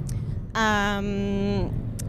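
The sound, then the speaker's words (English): A steady low road-and-engine rumble fills the inside of a moving car, with a brief sustained, hum-like tonal note rising over it midway through. “… car version, but this time we're driving”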